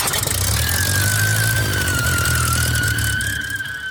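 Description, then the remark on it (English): A loud, steady roar of an airplane engine being revved while the opposite brake is stomped to turn the plane on a narrow runway, with a high, sustained squeal of tires riding over it for several seconds before easing off near the end. “The roaring power plant and squealing tires soon brought Don scrambling from the office.”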